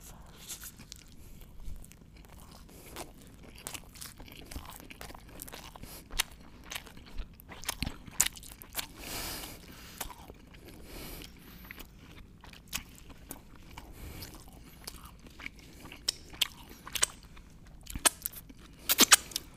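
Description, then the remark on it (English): Someone chews and crunches on fries, with irregular crisp bites and wet mastication clicks scattered throughout, fairly quiet overall with occasional sharper crunches and no talking. “Wait, let me take my fries first.”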